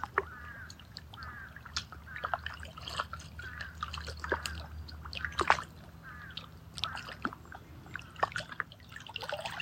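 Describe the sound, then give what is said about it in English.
Water trickles and drips steadily throughout, with scattered splashy drops over a constant low background rumble. No one speaks. “Crow being crow, water being water, you being you, me being me, all of us one.”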